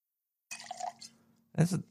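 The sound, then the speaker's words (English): A drink is poured into a glass, a short trickling, dripping liquid sound with a low steady hum beneath, ending in a louder splashy burst. “That's my secret code to pour another drink.”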